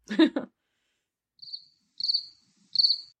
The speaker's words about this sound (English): Yeah. Could you like insert some like a cricket audio